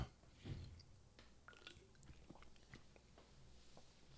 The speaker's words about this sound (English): Let me take a real quick sip. Lubricating the throat, yo, Pinkman style.